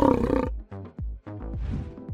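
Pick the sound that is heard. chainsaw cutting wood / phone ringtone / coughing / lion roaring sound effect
lion roaring sound effect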